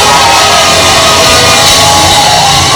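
A loud crowd erupts in sustained shouting and cheering as a shout of praise to God, many voices whooping and yelling together in a dense, continuous roar that fills the whole moment.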